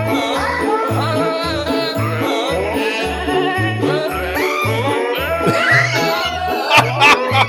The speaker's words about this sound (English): Jingle Bells by Goats. By Goats.